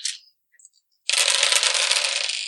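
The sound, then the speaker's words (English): A brief clatter opens, a few small clicks follow, then a sustained bright rattling of sixteen dice tumbling together, loud, continuing to the end with no voices. “Roll 16 dice and gets 3 successes.”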